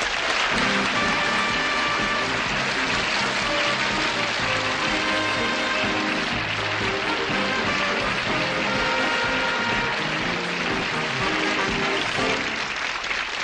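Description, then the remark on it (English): A crowd applauds steadily and loudly for the full stretch, a dense, even wash of clapping hands that never lets up, with no voices standing out above it. “Boy, what a terrific crowd.”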